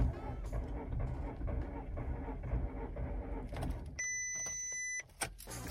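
A silver 2010 Golf car trying and failing to start after the key is turned in the ignition: a loud, rough mechanical grinding for several seconds, then a steady high electronic warning tone for about a second.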